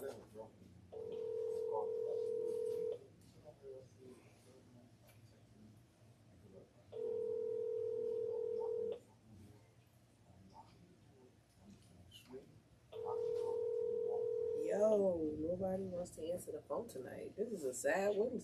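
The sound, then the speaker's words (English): Ringback tone of an outgoing phone call, three steady two-second rings separated by silent gaps, with no one picking up; a voice starts talking right after the third ring. “Nobody wants to answer the phone to me.”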